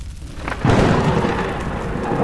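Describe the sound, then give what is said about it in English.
A sudden loud crack of thunder bursts in after a brief quiet moment, then rolls on as a dense, sustained rumble with a hiss like heavy rain. No voices. “Then, yeah, you hit his Eidolon in the face also, and it falls off his back, and its arm kind of flails upwards, and just a lightning bolt shoots up into the sky.”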